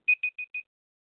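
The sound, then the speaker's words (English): A timer beeps four times in quick, even succession, each short high-pitched tone slightly softer than the last, then silence. “Sorry, that's not your timer.”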